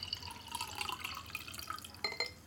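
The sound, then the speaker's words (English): A drink is poured steadily into a stein to combine it with another drink, with a continuous trickling and splashing of liquid, quiet overall, and a couple of brighter glassy splashes near the end. No one speaks. “I've drunk half of my drink, so I have room for your drink now in my stein. So I'm pouring it in.”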